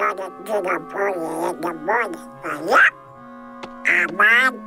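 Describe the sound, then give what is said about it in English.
A cartoon duck voice quacks out a rapid string of raspy, nasal, garbled syllables in uneven bursts, close and loud, with a brief pause before a final squawking flurry. “today is a significant significant benchmark of a cartoon character. It is Donald Duck Day.”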